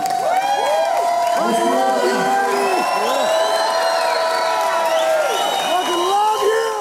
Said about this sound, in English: So please give the most amazing, audacious, bodacious round of applause.